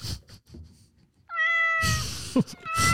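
A single drawn-out cat meow, clear, rising then holding steady, with muffled rumbling noise before it and a burst of rough background noise right after.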